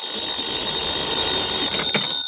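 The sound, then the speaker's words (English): A telephone rings in one continuous, shrill, high-pitched burst that holds steady for a couple of seconds, with no voices over it; it is Johnny Dollar's number ringing in the radio drama Yours Truly, Johnny Dollar. “Your number's ringing now, Mr. Dollar.”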